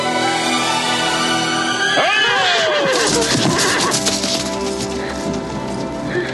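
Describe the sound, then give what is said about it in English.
In a film clip introducing Sean Connery's character, a horse lets out a single loud whinny that slides downward in pitch as it jumps over, heard over a dense, steady background of soundtrack noise and music. “Weird flash of light when the horse jumps over.”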